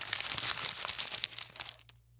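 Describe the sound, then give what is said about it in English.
Crisp crinkling and soft tearing of a paper case being peeled off a choc chip muffin, a busy run of small rustles lasting under two seconds before fading to quiet. “Here, let me get it out of the paper case for you.”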